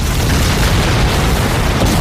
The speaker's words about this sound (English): And, you know, we're lighting fuses. We're firing fire arrows. There are explosions.